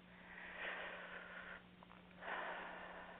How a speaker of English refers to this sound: Breathing nicely.